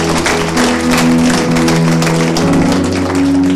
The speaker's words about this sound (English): We'd like to welcome our guest church. Could we give all our guests a round of applause?